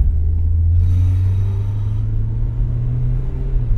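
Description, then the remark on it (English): Steady, loud low rumble of a taxi's engine heard from inside the cab while driving, a continuous deep drone with road noise and no talking. “Okay, we're out of the cab.”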